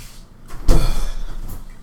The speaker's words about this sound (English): You notice you slowly open up the door. It's a nice long corridor, but you don't see anybody.